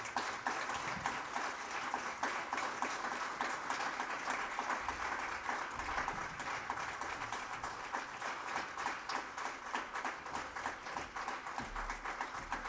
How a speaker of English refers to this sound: And I just want to thank them. If we could all honor them and give them a round of applause.